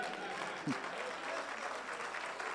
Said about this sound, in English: No, you may want to hold them claps, because it will be personal.